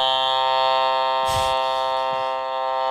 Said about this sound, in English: You guys, as the new podcast opener submission, can actually send in your custom sound effects to start the podcast. It can be a horn like this one.